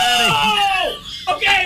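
man yelling

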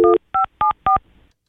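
telephone keypad dialing tones

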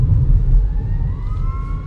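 fire truck siren passing

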